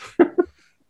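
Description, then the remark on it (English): A single sneeze: a breathy intake followed by two sharp, voiced bursts in quick succession, then silence. No one speaks. “That's how I know it's a good dad joke when it makes me sneeze.”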